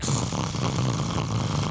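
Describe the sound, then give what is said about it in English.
A low-toned growl from a werewolf character rumbles steadily for a couple of seconds, deep and throaty with a rough, raspy texture and no pauses, fairly loud and alone without any talking. “As you say that, you hear a low-toned growl.”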